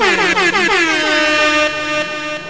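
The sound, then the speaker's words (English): A loud, sustained air horn blast fills the whole moment, bright and brassy with a slight wavering pitch, continuous without any speech. “Where's the air horn?”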